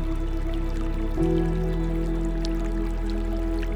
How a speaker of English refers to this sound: Soothing sounds of the flowing water to wash away any stress or tension that arises.